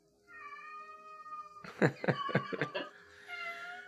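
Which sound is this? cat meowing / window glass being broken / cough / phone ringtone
cat meowing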